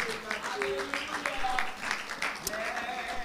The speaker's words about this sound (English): Clap your hands one more time unto the Lord. Shout unto God the voice of triumph.